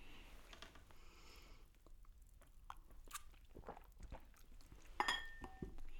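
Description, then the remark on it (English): Glasses of Coppola wine clink together in a toast near the end, one bright chime with a short ringing tail, after a few seconds of quiet background noise and soft handling taps. “Cheers. Cheers.”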